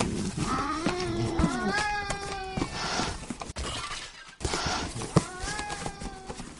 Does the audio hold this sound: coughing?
no